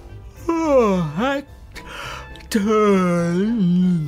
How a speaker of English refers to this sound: take your silly yawning out of my library!